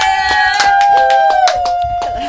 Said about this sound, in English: Slow clap. Yeah. Slow clap.